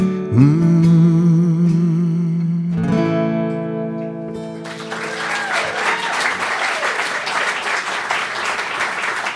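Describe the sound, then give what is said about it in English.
A sustained sung or played note with vibrato fades out, then an audience breaks into steady, dense applause that continues at full strength to the end. “That clapping stuff.”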